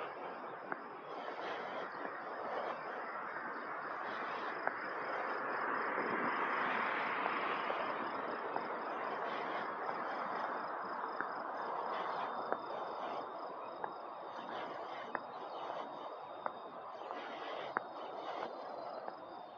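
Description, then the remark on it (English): A steady, dense chorus of crickets chirping at night, a continuous high trilling wash with occasional sharper clicks, moderately loud and with no voices over it. “Do you hear them? Well, we got crickets now, kids. Or frogs. It could be frogs.”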